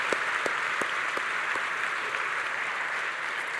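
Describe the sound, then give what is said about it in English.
A crowd claps steadily and energetically for children who told and sang the Christmas story, a dense wash of many hands with a few sharper individual claps standing out, sustained at an even level throughout with no talking. “Would you give just another round of applause?”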